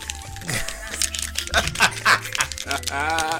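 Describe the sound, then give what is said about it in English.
A horror game's clicker creature makes harsh, rattling clicks in quick irregular bursts, fairly loud, over a low droning game background with some voice-like groaning. “Clicking in horror movies has always been bad, but like that type of clicking is just that's clickers.”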